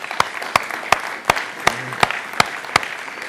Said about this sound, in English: If you have somebody in your life that speaks truth to you, that loves you, that nurtures you, that protects you, that guides you, can we just give God a round of applause for the women that have mothered us?